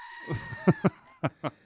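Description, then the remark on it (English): A goat bleats in a quick series of short, nasal cries: a few softer bleats, then four sharper, louder ones in an uneven rhythm. No one speaks. “Who needs a soundboard when you got a goat?”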